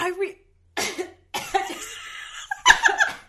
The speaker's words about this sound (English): I'm sorry. I gasped so hard I choked.